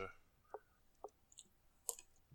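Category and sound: household object, playing cards being shuffled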